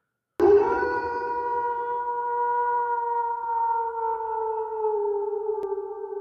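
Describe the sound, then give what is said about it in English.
A long, eerie howl rises abruptly and holds as a steady, hollow tone, sinking very slightly in pitch as it drones on loudly for about six seconds, with no voices. “The howl sends chills up your spine.”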